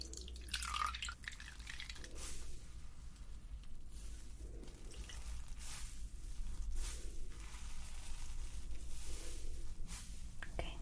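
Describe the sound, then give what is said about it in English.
A sponge is dampened in a small bowl of water, with soft splashing, squelching and dripping in short, irregular bursts over a steady low hum. “And then, just got a little bowl of water. And I'll just use this.”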